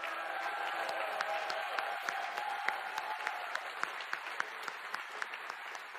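An audience applauds the Lord steadily for several seconds, a dense wash of many hands clapping with sharp individual claps popping out, sustained at an even level throughout.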